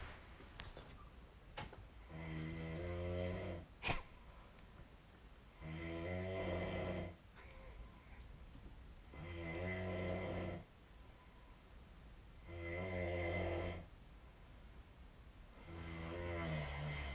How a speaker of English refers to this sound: You can tell that I'm some sort of distance away from from the actual snoring